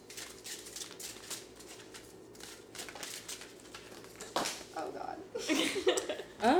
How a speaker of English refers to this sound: But, okay, yeah, we're going to do a little card shuffle ASMR. Here we go.